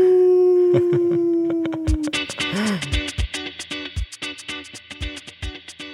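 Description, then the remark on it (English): A person imitates a wolf howl: one long, steady, slowly falling tone lasting about two seconds, then rhythmic music with sharp, regular beats takes over. “I mean, well, last time you sang for us, are you going to howl for us this time?”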